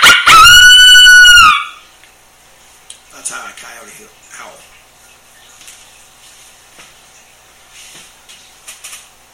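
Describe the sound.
A single loud, high coyote howl blown on a mouth call flipped upside down lasts about a second and a half, then cuts off into near silence with faint clicks and handling noise.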